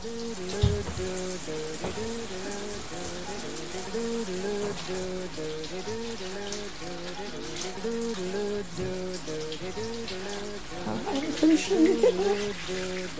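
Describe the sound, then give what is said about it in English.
A shower runs steadily throughout, a dense hiss of spraying water as several people get wet under it, with voices murmuring underneath and a brief louder splash of activity near the end. “Everyone in the shower with the doctor.”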